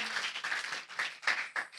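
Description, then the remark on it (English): A short burst of applause, many hands clapping in a dense, steady patter at moderate volume, with no voices over it. “You better get that applause sign up there. Yeah. Oh, applause.”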